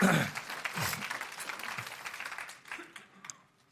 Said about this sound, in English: Go ahead. You want to clap? You can.